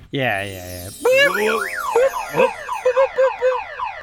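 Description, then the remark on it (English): A person vocally mimics a car alarm, cycling through warbling whoops, rising-falling sweeps and a run of quick repeated chirps, loud for about four seconds. “That is a very annoying car alarm sound.”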